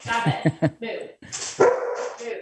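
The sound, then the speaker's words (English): A large dog, a German Shepherd, lets out three quick, deep barks in a row, then a longer, drawn-out bark and a few rougher yelps, loud and close together. “Well, Alicia gets the German Shepherd.”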